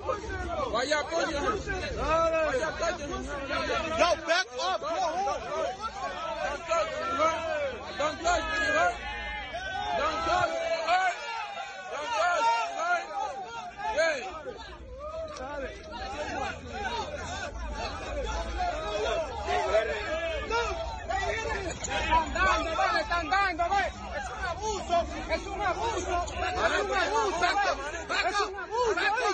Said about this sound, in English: several cops were punched and pelted with glass bottles by a rowdy crowd of men following the Bronx Dominican Day parade on Sunday. And this is a little clip of what it sounded like.